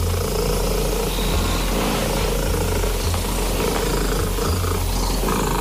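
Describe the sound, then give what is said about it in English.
A loud, steady domestic cat purr rumbles continuously, a deep buzzing drone with a gentle pulsing rhythm and no voices, during an official Guinness World Records attempt for the loudest purr by a domestic cat. “This is an official attempt for the loudest purr by a domestic cat.”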